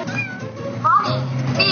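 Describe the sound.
A cat meows, a drawn-out, wavering cry followed by another short meow, with a voice murmuring faintly underneath.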